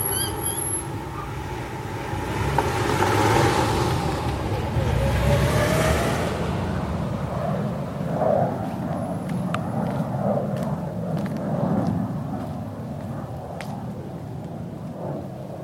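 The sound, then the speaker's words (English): Steady low road-traffic rumble heard in a backyard fills the background, swelling as a vehicle passes early on, then settling into a continuous drone with faint scattered ticks above it. No one speaks. “He reckons the traffic's actually always loud, but our ears, or our brains, are used to it.”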